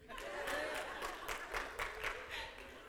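A crowd applauds steadily, with dense overlapping claps forming a continuous wash of noise and a few sharper bursts rising above it, with a murmur of voices underneath.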